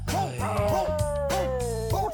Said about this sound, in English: Be a cool hound dog with a musical bark.